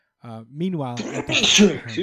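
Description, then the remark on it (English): One loud sneeze: a voiced, rising intake builds for a moment before a sharp, hissing burst, then a brief trailing breath. “Bless you”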